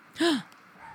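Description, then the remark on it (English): A single sharp dog bark rings out, one brief loud yelp with a falling pitch, followed by quiet background. “A dog barks, a butterfly flaps its wings, and it starts to rain.”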